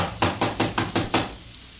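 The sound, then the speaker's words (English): Six quick, evenly spaced knocks on a locked wooden door of a room, moderately loud, followed by a brief quiet pause with no voices. “Door's locked, all right. Well, let's try knocking.”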